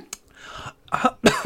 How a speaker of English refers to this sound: You okay there? Hi, I'm sorry if I missed it. Do you want to cough? No, I'm good. I'm good.